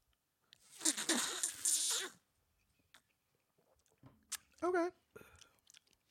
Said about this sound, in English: But what we made is a Truth Pond Punch. It is... a lot of Sprite, so but we'll see how it tastes. It has Blue Curacao. We're becoming Blue Curacao fans on this show. Yeah, I hate it. All right, let's slurp.